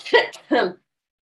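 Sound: cough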